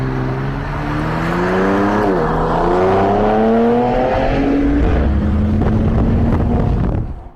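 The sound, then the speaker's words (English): A TRX pickup truck, not a V8, accelerates hard from a stoplight, recorded from a car following it: its engine note climbs, dips briefly at a gear change, then climbs again before leveling off, with loud wind buffeting the microphone throughout. “It is basically the TRX taking off from a stoplight.”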